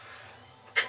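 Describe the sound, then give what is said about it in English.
A single quick, sharp sneeze bursts out near the end, after a stretch of quiet with no talking. “Bless you.”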